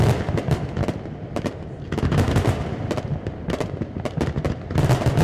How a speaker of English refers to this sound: The KGB Sky Show is something that people know and they know to expect a fireworks change. If the music changes, the fireworks will change.